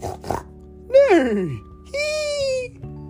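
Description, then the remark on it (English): Young voices of Peppa and her friends take turns imitating animal noises at a dance lesson with Madame Gazelle, not knowing what noise a swan makes: a couple of quick yelps, a swooping falling cry like a meow, then a long, steady bleat-like call. “Peppa and her friends don't know what noise a swan makes, so they all make their own noise. Baa! Meow! Woof woof!”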